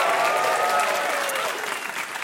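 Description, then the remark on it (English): A crowd applauds in response to the prompt "If you're a kidney and you know it, clap your hands," with dense, steady clapping that fills the whole stretch, fading slightly toward the end, with a faint murmur of voices mixed in. “If you're a kidney and you know it, clap your hands.”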